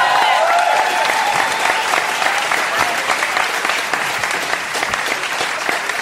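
A crowd applauds an auction winner called up on stage, dense overlapping claps forming a loud, continuous wash of noise that holds its level for several seconds, with a faint trace of cheering early on.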